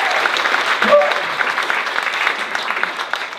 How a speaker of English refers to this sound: Give a big round of applause, my beautiful wife, yes.